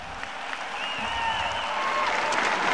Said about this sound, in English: I asked Lydia what it was like hearing the roaring applause from her peers.